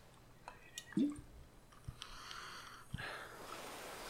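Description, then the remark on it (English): An alcoholic carbonated drink is poured into a glass, starting with a few soft drips and clicks, then a steady quiet fizzing hiss as the liquid settles and forms a good head, with no talking. “All right, we're going to pour some in here.”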